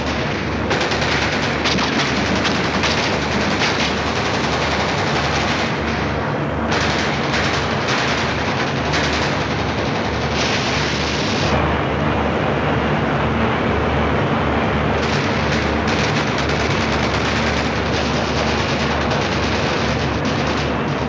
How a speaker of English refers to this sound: Through deadly enemy machine gun and mortar fire, the troops waded through deep water to the shore. Many never reached it.